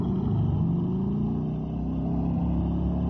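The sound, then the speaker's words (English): A motorcycle with a girl on it revs loudly and continuously, its throaty rumble climbing and easing in pitch for a few seconds, with no voices over it. “Girl on that motorcycle.”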